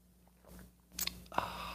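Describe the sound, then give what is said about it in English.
A few soft mouth noises as someone takes a quiet sip of coffee, with a brief slurp and swallow near the end and no talking. “Fill it with your favorite liquid. I like coffee.”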